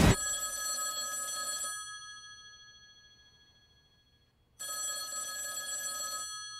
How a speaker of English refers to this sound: First, that phone over there is gonna ring.